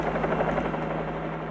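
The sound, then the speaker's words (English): A helicopter flies overhead, its rotor giving a dense, throbbing hum with a low buzzing tone that holds even throughout, with no voices. “A helicopter shows up and the Jurassic Park villains get shot.”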